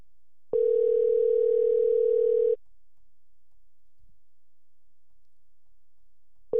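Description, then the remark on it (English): An outgoing call's ringback tone: a steady electronic hum lasts about two seconds, then a long silent gap, and the next ring just begins at the end. It's clear and fairly loud, with no talking. “Otherwise, what we'll do is we'll go through all of our picks and we'll call him again.”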